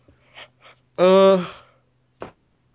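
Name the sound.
yawn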